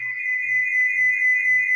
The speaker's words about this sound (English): Hold on. Uh-oh, echo.